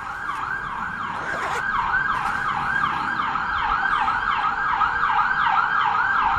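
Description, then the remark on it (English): Emergency vehicle sirens wail steadily, a rapid rising-and-falling yelp repeating for several seconds over a low rumble of traffic, loud and continuous with no voices. “I don't know if you could hear that, but it's the so many alarms.”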